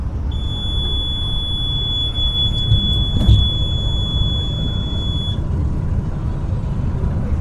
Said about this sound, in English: That beep has been going off all night. Buses inside Mexico are equipped with alarms that sound every time the driver goes over the speed limit. These international buses don't usually have those alarms, but yep, we got one.